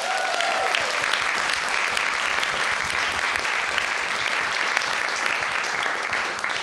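Sustained, dense applause from a sizable audience fills the whole stretch at a steady, loud level, many hands clapping at once without any voices breaking through.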